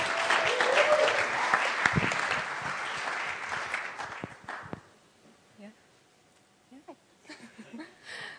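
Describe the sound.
An audience claps loudly and steadily for about five seconds as a speaker comes up, then the applause cuts off abruptly, leaving quiet with a few soft sounds and a brief voice near the end.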